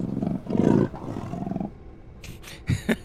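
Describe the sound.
A person imitates a cat's growl: a low, rough, sustained snarl swelling and fading in a few waves, followed by a couple of short breathy hisses and clicks at the end.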